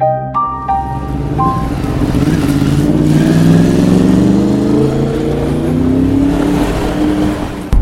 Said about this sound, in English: The car was doing 15 miles over the posted speed limit down the winding mountain road, hauling ass towards the nearest small town.